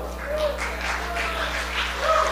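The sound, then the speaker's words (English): An audience breaks into steady, dense clapping for a couple of seconds, a continuous wash of many hands at moderate volume, with faint voices mixed in. “You don't have to clap.”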